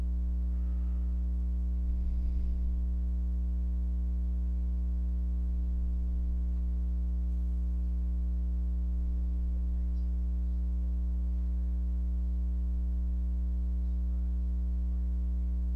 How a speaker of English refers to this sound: So I can't tell if you guys actually can hear the hum or not. If you can, I'm sorry.